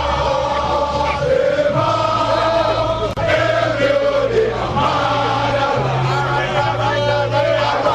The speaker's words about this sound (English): The sun has now disappeared from the sky. As it starts to get dark, the crowd becomes agitated, demanding the removal of barricades so they can demonstrate in front of the Jubilee House.